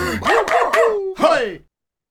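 A dog barks four times in quick succession, loud and close, with the last bark drawn out slightly longer before the sound cuts off.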